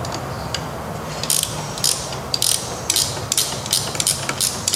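A ratchet wrench turns a 17 mm motorcycle suspension adjuster one or two turns off, giving a series of sharp, bright clicks in short irregular bursts over a low mechanical hum. No one speaks.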